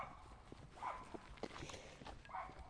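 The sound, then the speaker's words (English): A small dog on a farm barks a few times, faint sharp yaps spaced apart over a low, rustling outdoor background with occasional soft knocks. “Small doggy on one of the farms here. Alerted to the sound of my voice, undoubtedly.”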